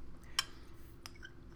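Someone sips a drink: a bright glassy clink rings out, then a softer tap follows a moment later, with no talking over a low steady background hum.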